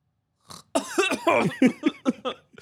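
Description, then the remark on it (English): A voice imitates snoring, making a quick series of short, rough, throaty bursts in an uneven rhythm, loud and alone, after a brief breathy lead-in. “I was just watching, like, the back of your head, like, snore. You're like...”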